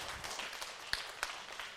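A crowd applauds steadily for a speaker from Fellowship Baptist Church in Columbus, Ohio, a dense wash of many hands clapping at once, with a couple of sharper individual claps standing out near the end. Fairly quiet and continuous, no voices.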